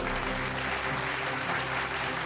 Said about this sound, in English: We've got to give ourselves a round of applause for that.